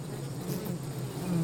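A steady, droning hum of honeybees buzzing near their hives, many wings blending into one continuous low whir that holds for the whole moment with no voices.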